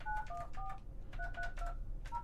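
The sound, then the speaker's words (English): A quick series of phone keypad dialing tones, about seven or eight short beeps in irregular rhythm, heard fairly clearly over a low background hum, with no one talking. “Is it ringing?”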